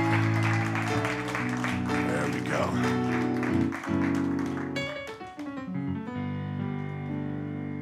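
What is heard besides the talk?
audience clapping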